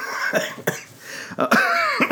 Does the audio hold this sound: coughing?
yes